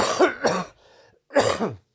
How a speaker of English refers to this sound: So apologies for the, like, it's right on my throat now. You know, like if I breathe in too fast, I want to cough.